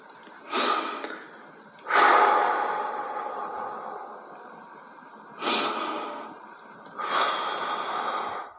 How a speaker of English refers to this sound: Okay, you hear the breathing? He's going through it now. It just came out of nowhere. Listen.